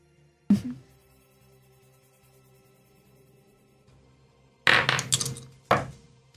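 dice rolling

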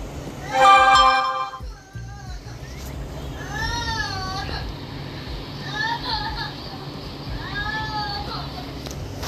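cat meowing

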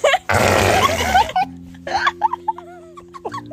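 loud fart

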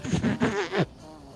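bees buzzing

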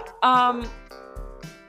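dog barking

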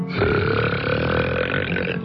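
loud burp

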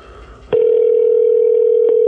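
telephone ringing unanswered

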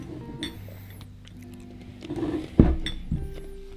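crunching ice

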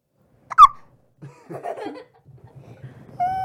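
baby hiccuping

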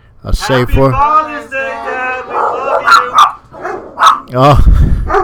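dog barking

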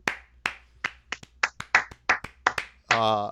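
round of applause

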